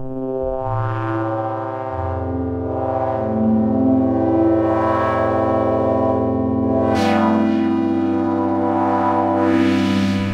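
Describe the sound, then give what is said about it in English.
A synthesizer lead plays a few long, sustained notes with a rich, buzzy harmonic tone, shifting pitch every couple of seconds, with a bright fresh attack partway through. Loud and steady, no talking. “What else have we got? Keys, leads. Let's have a look at leads.”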